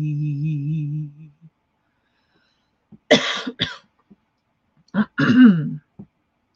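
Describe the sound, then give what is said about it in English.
A low hummed note fades out, then after a pause come a few harsh coughs and a throat-clearing rasp in short bursts, with silence between them. “Sorry for coughing.”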